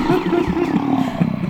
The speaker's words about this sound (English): Ah, get away, cougar!